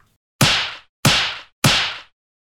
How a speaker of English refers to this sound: I'm going to give him a few slaps around the face.